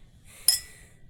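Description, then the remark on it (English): A single bright clink of glasses touching in a toast, sharp and ringing briefly, then fading into quiet. “Right, cheers, man. Cheers.”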